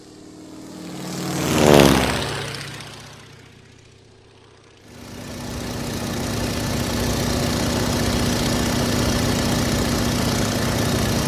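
A propeller airplane roars past, its loud engine pitch sliding downward as it fades, then a steady, buzzing propeller drone starts up and holds for the rest, with no voices.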